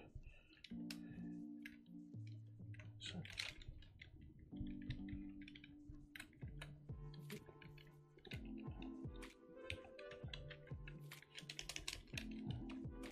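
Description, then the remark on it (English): Rapid, uneven keystrokes clack clearly on a computer keyboard for several seconds as someone types in the dark, with a low humming tone droning steadily beneath the clicking. “It's hard typing in a dark.”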